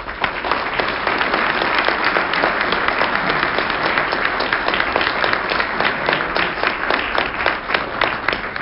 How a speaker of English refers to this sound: I noticed every time you mentioned money, you got applause.